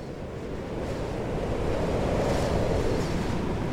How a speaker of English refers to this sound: Across Lower Leigh, underneath the noise of the raging storm, there has grown a layer of peril that spikes the thoughts of the inhabitants.